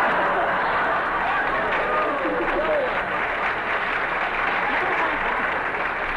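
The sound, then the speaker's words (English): A sustained burst of studio audience applause fills the whole stretch, dense steady clapping at an even loudness, with a few faint voices and cheers mixed into the crowd noise. “Even Salter applaud.”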